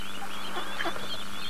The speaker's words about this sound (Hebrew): הכל פה מסביבנו מלא מלא מלא ברווזים.